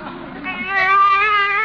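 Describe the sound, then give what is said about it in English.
A baby in a car cries in one long, high, wavering wail that swells after a brief lower start and holds loudly to the end, with nothing else around it. “A baby!”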